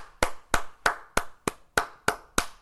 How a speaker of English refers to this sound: I wonder if it will identify a clap as a clap.